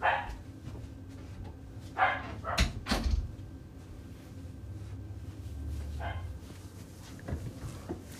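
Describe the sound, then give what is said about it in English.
A dog barks several times in short, irregular bursts, a couple clustered close together, over a steady low rumble with no one talking, as the husband comes home. “The dog's going to tell us.”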